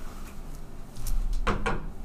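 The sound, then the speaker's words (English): Two quick, fairly sharp knocks on a wooden surface, following a softer tap, with a low rumbling background and no one speaking. “I knocked on wood, man.”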